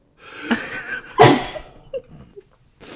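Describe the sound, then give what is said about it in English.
A single loud sneeze bursts out after a brief wind-up, followed by a few quiet breaths and small mouth sounds before a short silence. “Sorry, ladies and gentlemen, I sneezed. I'm going to have to do it again, I think.”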